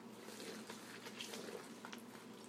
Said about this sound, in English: Just flour, salt, and yeast. And now I'm going to stir in the water to make a slightly sticky dough. Boom. Boom, here comes the water. There's 1 cup.